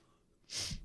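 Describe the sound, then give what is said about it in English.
A short, stifled sneeze: a quick breathy hiss that cuts off abruptly, held back rather than fully released. Fairly quiet, with no talking around it. “It's such a bad sneeze.”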